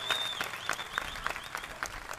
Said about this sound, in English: Clap for that.